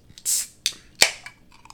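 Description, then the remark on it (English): Someone chews a pickle: a few crisp, wet crunches in an uneven rhythm, the loudest near the start and middle, trailing off into fainter, softer chewing. No one speaks. “And I ate one of your pickles.”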